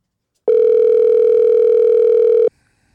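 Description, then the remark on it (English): A single loud ringback tone of about two seconds as a phone call rings through: a steady, buzzy electronic hum that starts and stops abruptly, with no voices. “Let's get Eddie on the phone.”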